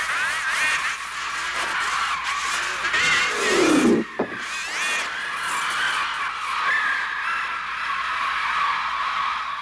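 A dense, continuous wall of harsh, synthetic-sounding bird shrieks and caws, electronically produced for the soundtrack of an Alfred Hitchcock film, loud and grating, with a swooping cry and a brief drop before the screeching swells again.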